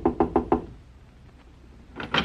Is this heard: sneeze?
no